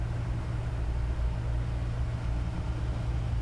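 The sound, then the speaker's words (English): Steady low rumbling ambience of the Stockport Exchange short stay car park in Stockport. A constant deep drone of engines and traffic hum fills the space at an even level, with no voices and no distinct individual events. “Stockport Exchange Short Stay Car Park, of course.”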